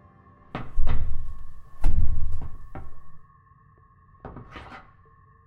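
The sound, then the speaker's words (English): Several heavy thuds and rattles as a stuck wooden cupboard door, a Chingford Winston 703 design, is pushed and jolted without opening, with a steady electronic hum running underneath; no one speaks. “The door's stuck.”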